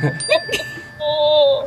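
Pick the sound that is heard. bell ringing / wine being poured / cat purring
bell ringing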